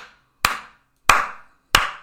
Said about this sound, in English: Good job, Vikings. So we'll go ahead and give you a golf clap.